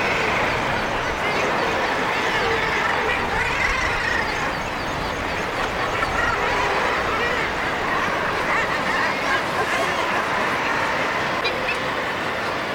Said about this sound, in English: So I'm looking down onto the stack now, and as you can hear, it's just like a whirl of different seabirds' voices, mostly kittiwakes and guillemots. And there are some razorbills in there, which are more sort of loners.